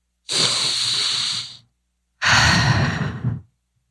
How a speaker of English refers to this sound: Let's take a little breath.